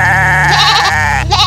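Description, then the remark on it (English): Goats wandering around a room bleat loudly: one long, quavering bleat that wavers in pitch, followed right away by the start of another, with no talking. “And the goats just wander around the room in a dither, bleeding horribly.”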